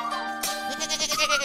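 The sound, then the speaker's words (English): A goat bleats loudly, one long quavering, wavering cry that fills the short moment with no other sounds around it. “Ooh, Servo wanted a goat for the road.”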